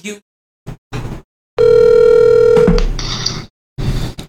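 A telephone call ringing tone sounds once, a steady electronic buzz lasting about a second, loud, with brief clicks and rustling handset noise before and after it.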